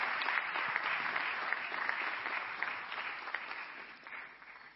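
Steady audience applause, a dense wash of many hands clapping continuously for the whole stretch, fairly even in loudness and easing slightly toward the end, with no voices standing out.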